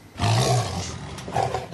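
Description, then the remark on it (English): A caged man-eating tiger that has killed five or six people lets out a deep, rumbling roar, loud, swelling at the start and surging again near the end over about two seconds, with no voices. “man-eating tigers in a cage”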